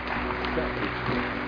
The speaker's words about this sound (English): So just give them all a clap and just appreciate each of one who's come.